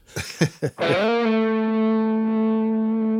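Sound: electric guitar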